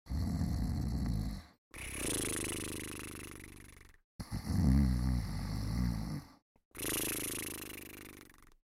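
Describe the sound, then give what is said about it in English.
Loud snoring from two guards lying on the ground after falling coconuts hit their heads, in four long rumbling breaths separated by brief pauses, with rattling low tones and airy hiss. No one speaks. “They fell to the ground and immediately began to snore.”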